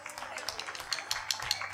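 An audience applauds, dense overlapping hand claps forming a steady bright crackle with a few sharper claps standing out, sustained for the whole moment.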